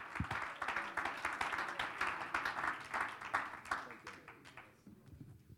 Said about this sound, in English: Someone ought to clap your hands and love the Lord in this house.